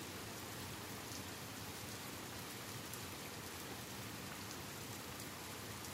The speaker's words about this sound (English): But in our story today, there is a lot of rain, and we're going to find out what a lion does when the rain just won't stop.